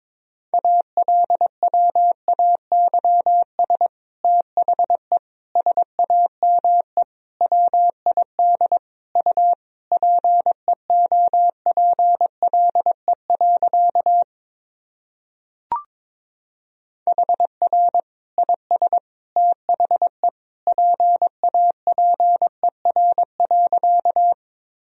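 Morse code keyed at 22 words per minute, sending practice sentences built from the top 300 words and abbreviations: a steady, mid-pitched tone beeping in quick runs of dots and dashes, broken by a short pause and a single click partway through. No voices.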